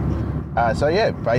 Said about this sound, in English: Well, police car.